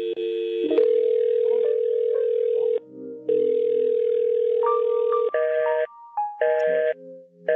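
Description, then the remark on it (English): An electronic telephone ring plays alone: loud, sustained buzzing tones that shift pitch, broken by a few short pauses, clear with no voices. “Do I hear a phone ringing?”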